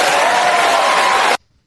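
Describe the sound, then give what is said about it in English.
Lukewarm crowd applause in response to a proposal for gun registration at the point of sale, a steady wash of clapping that holds at an even level for just over a second, then cuts off abruptly into near silence. No one speaks. “Like that crowd is not solidly behind, you know, gun confiscation.”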